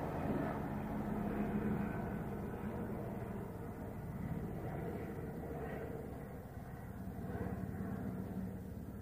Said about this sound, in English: And so this is just another day of capturing that plane activity above my vehicle on Vine and G Street.